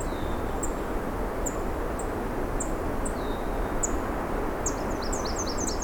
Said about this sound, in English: Oh no, that common yellow throat, I think. Just a slight tick sound.